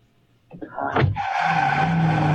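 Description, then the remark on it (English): Car tires screech loudly after a brief rumble, settling into a sustained high-pitched squeal that continues steadily to the end as the vehicle skids to a stop. “Just stop the car and I'll tell you what he said.”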